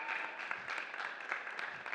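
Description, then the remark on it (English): An audience applauds the band and its drummer, John, steadily: a dense wash of many hands clapping at once with brief swells, sustained and fairly loud throughout with no voices standing out. “And a very special round of applause for John on the drums.”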